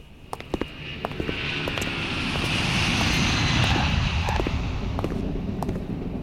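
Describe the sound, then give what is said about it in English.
An airplane engine drones steadily, its broad roar swelling slightly and holding, with scattered sharp clicks and pops on top. No one speaks. “Strike up the band the moment the director exits the plane.”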